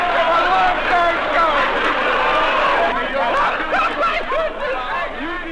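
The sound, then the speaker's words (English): A large crowd of thousands outside City Hall chatters continuously, many overlapping voices blending into a dense, loud hubbub with occasional laughs rising out of the din, steady for the whole stretch. “And from the City Hall balcony, safe from the crowds, more thousands of them, the stout-hearted men talked to their subject.”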